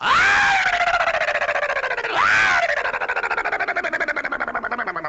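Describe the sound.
A voice lets out two loud, frantic shrieks of mock madness, each starting high and sliding downward into a rapid, quavering warble that trails off, unbroken for about five seconds.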